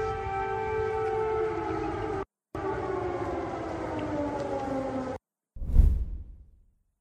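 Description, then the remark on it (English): A loud, sustained air raid siren wail in Ukraine, heard during Biden's walk with Ukrainian President Zelensky, with slowly falling harmonic tones, cut by two brief silences, ending with a short whooshing burst that fades out. “When Biden walked across a video, a staged video, with Ukrainian President Zelensky, you'll hear in the background an air raid siren go off.”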